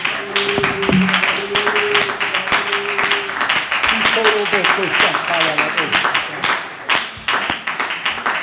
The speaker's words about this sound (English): Come on, why don't we clap our hands and worship him?